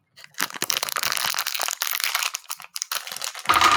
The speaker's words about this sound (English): But yes, thanks to our friends at What the Dice Podcast, I am ready to roll because I just cracked one of the dice sets they sent us. For a second, I thought you were opening a bag of candy, and I was like, I thought so too.